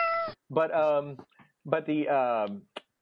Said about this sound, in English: that's a load of, God, those cats are coming here again.